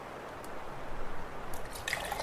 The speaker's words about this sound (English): You know, there's something satisfying about listening to you chug water.